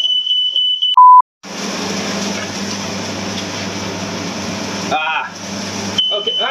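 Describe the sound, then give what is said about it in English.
A shrill, high-pitched fire alarm tone sounds, set off while a steak is cooking, then a short, lower beep. A loud rushing, sizzling noise follows for several seconds, and the piercing alarm tone returns near the end. “What happened was the fire alarms here are very sensitive, they went off.”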